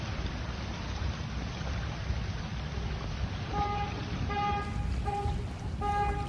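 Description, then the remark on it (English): A steady, loud rush of water and low engine rumble as cars plow through a flooded street on the Las Vegas Strip, with several short car horn honks sounding in the second half. “This is pretty scary as cars try to get through this mess.”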